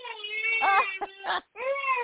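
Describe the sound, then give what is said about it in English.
A baby wails in two long, rising-and-falling cries, high-pitched and strained, with a brief gasp and a short pause before the second cry starts again at full volume. “All right, yeah, I've got a crying baby here, and we are out of time.”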